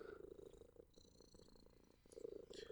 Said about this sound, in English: He just walked into this room from after sleeping and was already purring like a motorboat. For no apparent reason.